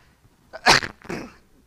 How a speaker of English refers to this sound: I'm going to take a cough break now, though.